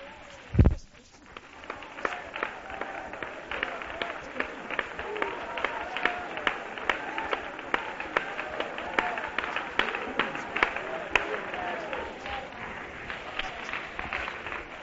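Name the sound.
audience clapping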